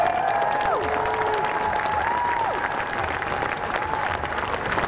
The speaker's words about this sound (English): Give them a great round of applause.